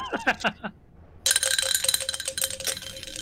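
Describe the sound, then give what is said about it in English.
A few short squeaky chirps, a brief silence, then a dense, gritty scraping and rattling of rock on glass, full of high clinks, continuing loudly to the end. “They can follow and make scrapey rock sounds on glass.”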